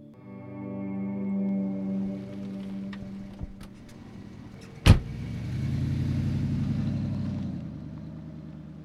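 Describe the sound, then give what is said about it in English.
A car carrying a hitchhiker drives along the road with a steady low engine hum and tire rumble, broken by one sharp thump partway through before the road noise swells again. No one speaks. “As the car moves down the road, we start talking about his first hitchhike.”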